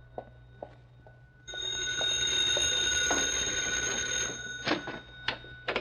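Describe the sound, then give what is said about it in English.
A payphone in a neighborhood drugstore rings in one sustained, bright metallic burst lasting about three seconds, then stops, followed by a few sharp clicks and clatters over a steady low hum. “It's for me. I've been expecting a phone call.”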